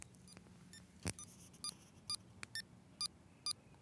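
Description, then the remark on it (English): A digital metronome set to 132 beeps steady quarter-note clicks, short bright electronic pips evenly spaced about every half second, after a single sharper click, over faint background noise. “And so this is sort of a typical thing you'll find with digital metronomes in particular, is that they'll do a start of the measure and it's playing quarter notes.”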